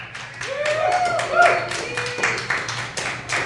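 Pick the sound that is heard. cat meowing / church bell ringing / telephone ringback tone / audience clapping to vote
audience clapping to vote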